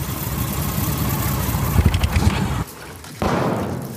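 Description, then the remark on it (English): A motorcycle-and-sidecar rig's engine idles with a steady, throaty rumble and a short burst of revving, then briefly drops off before the idle picks back up, after pulling up to a stop. “Goggles on his gas-powered surfboard and Kipper and Mulligan in their motorcycle and sidecar rig are the first to pull up to the bumps.”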